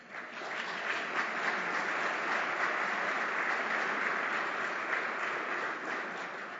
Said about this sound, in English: Typically, we ask the audience to refrain from applauding, but nobody ever listens, so clap as much as you want. It's more fun this way.